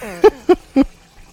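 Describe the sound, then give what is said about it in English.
Sparkling water glugs out of a bottle in three quick, evenly spaced gulps, fairly loud, with a faint hiss between them. “I'll give you pre-warning now that I'm about to pour my sparkling water, just so you don't get the suspicious sound.”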